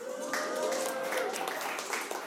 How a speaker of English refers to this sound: And by the way, a friend of mine said that's the only time we've heard our church applaud is for football, not for Jesus or anything.